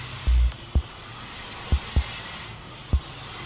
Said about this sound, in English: Traffic in Little Village is always a hot mess. You can often hear the horns of angry drivers and noises from the trucks passing by.